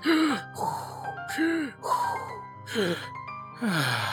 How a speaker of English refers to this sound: In fact, I may need to excuse myself to do some breathing exercises to stay calm.